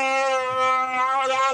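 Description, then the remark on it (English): A sustained roar from Chewie inside the Millennium Falcon at light speed in deep space, loud and steady for over a second, with a rich, buzzing, mid-pitched tone that wavers slightly in pitch. No speech, just the single drawn-out cry. “Chewie roars.”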